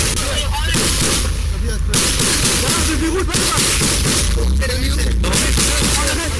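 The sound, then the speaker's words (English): Gunfire, rockets and artillery fire in the conflict involving Israel boom through a dense, noisy backdrop, with several sharp blasts spaced a second or so apart. Indistinct voices can be heard underneath. “You might even be able to hear the gunfire that's going on behind me.”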